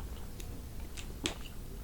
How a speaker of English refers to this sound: Take a drink of water. I took a sip of water at the exact same time.